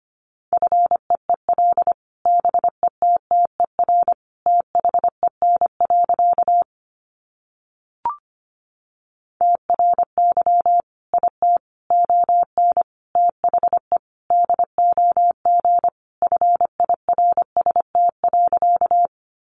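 A steady mid-pitched tone keys on and off rapidly in Morse code at 25 words per minute, short dots and longer dashes at a brisk pace, broken by a brief gap before the sending resumes.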